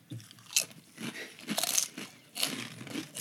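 Loud, dry crunching as a very spicy chip is bitten and chewed in the One Chip Challenge, with several sharp, crackly bursts in an uneven rhythm and no talking.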